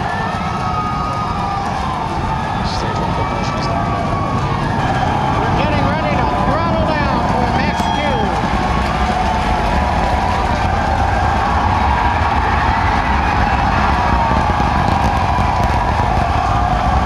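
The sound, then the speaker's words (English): A steady, deep rumbling roar of a Falcon Heavy rocket launch fills the whole clip, with a large crowd cheering and shouting over it continuously, loud and unbroken throughout. “When the Falcon Heavy did launch, there was an eruption from the crowd that you thought would never end.”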